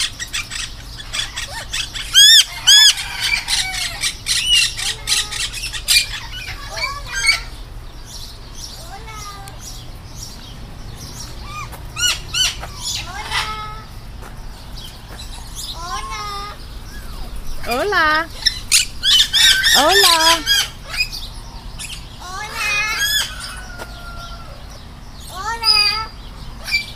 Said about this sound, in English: There's some parrots talking to us this morning.